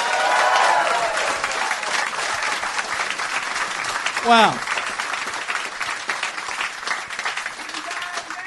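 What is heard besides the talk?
audience applause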